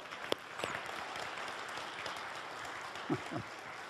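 A large audience at Trinity Church applauds steadily, a dense, even wash of clapping throughout, with a few sharper, louder claps standing out near the start and end, giving another round of applause.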